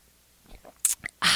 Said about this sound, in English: So, let me take a sip of my water.